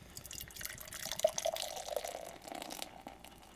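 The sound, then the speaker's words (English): A 5.3% Vienna lager poured from a crowler can into a glass at about 6,000 feet: a steady splashing gurgle that runs for a few seconds, rising and settling slightly, with no voices. “And the pour.”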